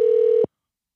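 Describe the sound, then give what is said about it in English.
A telephone tone sounds once as a phone call is placed, a steady electronic hum lasting about half a second before cutting off abruptly into silence. Clear, with no voices. “I'm going to call him right now.”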